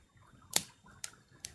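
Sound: crackling fire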